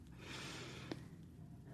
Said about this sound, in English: So maybe put your hands over your belly buttons with me for a moment. See if you can breathe in and press your hands out with your breath, letting your belly really poke out.